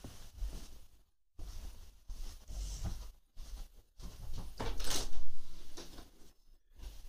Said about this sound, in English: Just a second. It's the front door.